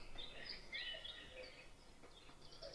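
Soft birdsong with scattered high chirps and short whistled phrases over a faint hiss of background noise, fairly quiet, with no voices.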